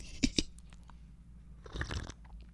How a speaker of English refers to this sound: Excuse me, just took a sip of chamomile tea.